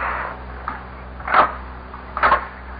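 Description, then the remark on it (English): Knocking on wooden door number 24: a light tap followed by two heavier, muffled knocks spaced about a second apart, set against a faint steady hum with no voices. “A knock on the door.”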